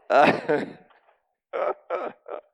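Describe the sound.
Two loud sneezes burst out back to back, then after a short pause come three shorter, softer voiced bursts in quick succession.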